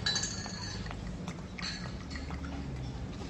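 Wine glasses clink together in a toast in Spain, with bright, ringing tones, a couple of quick chimes near the start and another mid-clip, over a low steady background rumble.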